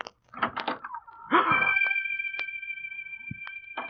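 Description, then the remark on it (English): A few dull knocks and rattles as a door is worked, then a long, steady creaking tone from its hinges while it swings, ending in a short thud as it shuts. No voices. “Why did you close that door again?”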